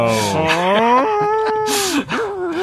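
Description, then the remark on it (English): A voice imitates a cow's plaintive, pained moos: a few drawn-out, wavering low calls with breathy bursts between them, loud, with no other sound around them. The moos come from Asteron, who has been pushed into a cauldron with his boots wiggling above its edge. “You see his boots wiggling above the edge of the cauldron and some plaintive moos of pain.”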